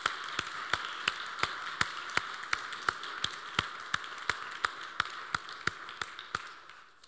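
Audience applause: one set of sharp hand claps keeps a steady beat of roughly three per second over a soft, continuous wash of quieter clapping, with no voices.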